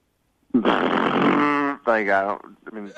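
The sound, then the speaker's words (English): A voice imitates a motorcycle engine: a long buzzy lip-rumble, then a rising-and-falling revving whine, and a short sputter at the end, with no other talk. “Can you just kind of give me a little bit of a taste of what you think it sounds like?”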